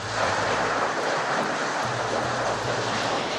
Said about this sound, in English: But it is absolutely raging, and we keep seeing these pulses of water coming up onto the street. I'm going to stop talking for a second and just let you listen to this.